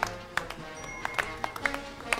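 A quiet golf clap: soft, scattered hand claps, roughly ten light smacks at an uneven, unhurried pace, faint and polite with no cheering or voices.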